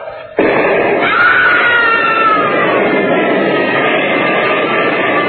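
A sudden, loud burst of roaring noise from a dynamite charge blasting through a mountain, with a man's scream rising over it for a moment before sinking back into the sustained, crackling din of the blast.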